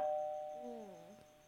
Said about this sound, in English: All you're going to hear is the doorbell ring.